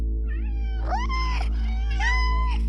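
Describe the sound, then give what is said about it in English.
A cat meows three times, drawn-out and rising-then-falling in pitch, the last two louder and more strained, over a steady low hum. “including our clawed friends Xenotron, Fuzzy, Nemesis, and Fluff Nugget.”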